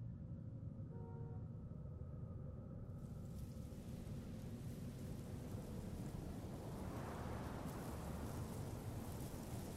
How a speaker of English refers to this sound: I grab my jacket and head into the worst storm of the winter.